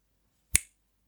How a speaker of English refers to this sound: that was a click, a clicking sound. And that's what I use when I make a mistake as I'm recording, or I've started saying something and I think, oh, that was a terrible way of saying it